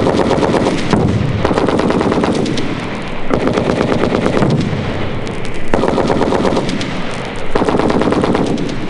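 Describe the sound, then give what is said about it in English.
Sustained bursts of machine gun fire rattle loudly and continuously over an infiltration training course, with bullets inches overhead as a trainee low crawls through barbed wire and sand. Rapid repeated shots with brief pauses between bursts, harsh, with no voices. “The trainee low crawls through barbed wire, sand, explosions, and machine gun bullets inches overhead.”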